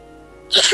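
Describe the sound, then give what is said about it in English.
A single sudden sneeze bursts out after a quiet moment, loud, with a sharp hissy burst followed by a short voiced tail. “Bless you.”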